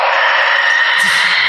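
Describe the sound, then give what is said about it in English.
A shrieking leprechaun sound effect played on a show for St. Patrick's Day: one loud, shrill, high-pitched scream held steady for about a second and a half without a break, with no talking over it. “it's not typical that you hear a shrieking leprechaun on this show”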